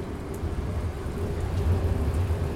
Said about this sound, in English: Heavy rain. I'm standing outside the coffee shop on the road. Probably just hear some cars going by. I'm at the coffee shop, the New York coffee shop, so this is under the train tracks. You might hear the train going over my head, too.